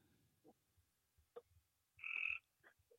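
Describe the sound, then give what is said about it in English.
Crickets chirp outdoors, with a few short scattered calls and one louder, sustained trill in the middle, set against a quiet night background with no talking. “Man, I'm hearing crickets and shit. Why am I hearing crickets right now?”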